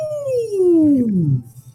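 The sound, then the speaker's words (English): A voice imitates a low whale call: one long, smooth moan that slides steadily downward in pitch for over a second, fairly loud, then fades out. “And as the hammer strikes it gives out that low whale noise, I guess.”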